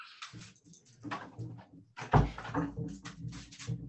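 A dog paws and scratches at a door, wanting to go out, with a quick series of scraping and rattling sounds and a heavier thump midway through, no talking.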